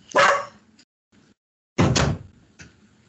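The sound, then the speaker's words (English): Two loud, sharp dog barks about a second and a half apart, each followed by a short softer tail, with a faint thump in the quiet between them. “Let me kick my dog out.”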